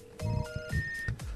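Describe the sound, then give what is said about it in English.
A phone rings with a short electronic melody of stepped, steady tones, fairly loud, over brief thumping low-end pulses, with no one talking, as a caller phones in to the show. “Slacker's calling in.”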